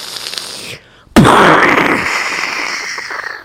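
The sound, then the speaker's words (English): A single loud cannon blast erupts after a brief quiet, firing a cannonball across the water at a ship's sail and mast, its sharp boom followed by a long roaring, hissing tail that slowly fades over a couple of seconds. “And the cannon roared.”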